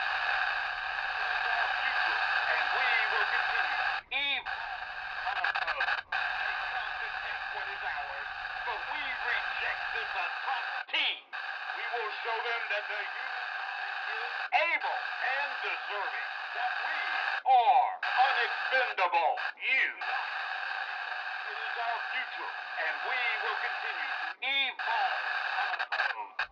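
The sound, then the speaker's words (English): Steady, thin radio static hisses and crackles for the whole stretch, with tinny, garbled tones warbling inside it and a few brief dropouts where the signal cuts out momentarily. “It's gotta have something to do with the static.”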